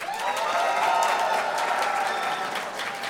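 A crowd applauds steadily for about three seconds as a round-of-applause vote for a contestant's Millennium Falcon pick, a dense wash of clapping that holds at a fairly even loudness before tapering slightly at the end.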